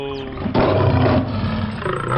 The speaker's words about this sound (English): My god, that tiger's mauling you.